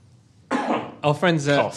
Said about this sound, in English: Let me cough whilst you tell us about it.